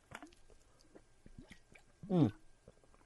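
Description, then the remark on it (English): Mouth sounds, small wet clicks and lip noises, then one loud gulping swallow as someone takes a sip of water, with no talking. “So, speaking of the NES Classic Edition, which, Jesus Christ, how many frickin' segments can I do on it as I get a sip of water?”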